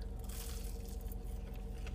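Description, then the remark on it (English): Crunchy bites and chewing on crispy fries, a steady run of soft crackles and squishy mouth sounds with no talking. “Same crisp. Yep, that's definitely there. That, like, nice crunch.”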